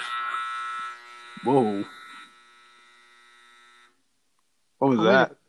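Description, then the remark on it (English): A classroom timer goes off with a steady, harsh electronic buzz lasting about four seconds, then cuts out. Brief voices sound over it and once more after it stops. “I'm recording in a classroom. Right. Yeah. The timers go off.”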